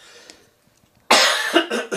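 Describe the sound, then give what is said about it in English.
After a moment of near silence, a person coughs loudly, a harsh burst followed by two shorter coughs in quick succession, with no talking. “Getting your cough back?”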